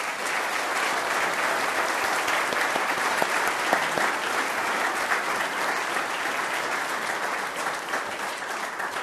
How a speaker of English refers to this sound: I couldn't be any more pleased with you, boys and girls, so absolutely delighted, and I think we want to give you another big round of applause as well.